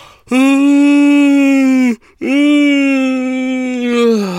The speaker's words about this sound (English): Oh, big old yawn, and that's me done.